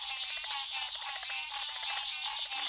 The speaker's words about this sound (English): We leave you this week listening to the symphony in a southern swamp. A variety of frogs are singing. They're the nasal tones of green tree frogs and the clicking tones of cricket frogs. And leopard frogs add their chatters as percussion.